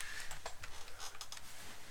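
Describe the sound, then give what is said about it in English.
A computer keyboard is shoved aside, giving a few quiet plastic clacks and soft knocks in quick, irregular succession, with no talking. “I actually think, hang on, take my keyboard.”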